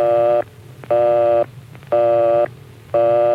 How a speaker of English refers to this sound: If the line is busy, you'll hear this busy signal.